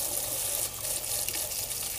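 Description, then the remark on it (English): Water runs steadily from a tap in a continuous, hissing stream, fairly even in level for the whole two seconds, with no voices over it. The water is warming up but not yet hot. “Okay, the water's not quite warm yet. Or not hot enough yet. It's kind of warm.”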